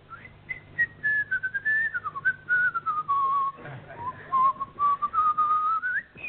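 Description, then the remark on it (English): A person whistles the Hungarian Rhapsody, the pitch gliding and stepping through a series of sustained and short notes, with a faint low hum in the background and no talking. “That's the Hungarian Rhapsody.”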